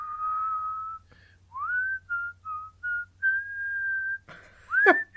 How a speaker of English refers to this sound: Can I just say, why is it when you whistle, you look at the ceiling?